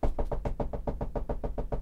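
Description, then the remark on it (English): Small, polite knocking on Dave's door: a quick, even run of about a dozen light raps, clear, with no voices. “Such a little asshole on Dave's door.”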